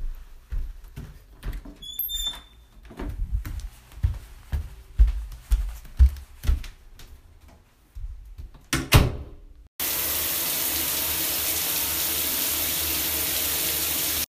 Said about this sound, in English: I get out of bed. And walk to go take a shower.